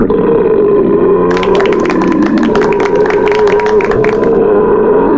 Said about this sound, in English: when you were first creating the signature belching sounds, why does number four have an angel heavenly chorus and number five doesn't?